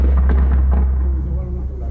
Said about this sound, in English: Just then, the sound of automatic gunfire tore along the corridor.